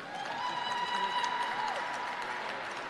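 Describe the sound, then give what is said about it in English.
Steady audience applause fills the whole stretch as a list of names is read out, a dense wash of clapping at moderate volume with no pauses. A faint voice rises through it briefly. “Come on, the clapping's got to come on up.”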